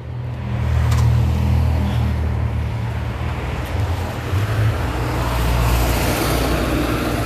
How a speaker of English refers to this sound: I'm sorry, here come another school bus. Sorry about that, guys.